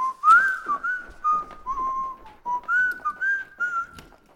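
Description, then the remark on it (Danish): A man whistles a wandering tune in a utility room after coming home from work, steady and clear, the melody gliding between a few notes over several seconds, with faint clatter beneath. “Jeg kan høre ham fløjte ude i bryggerset.”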